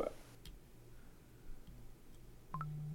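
A few sparse, sharp clicks of keyboard keys being pressed, spaced unevenly over a low steady hum, quiet and without any talking.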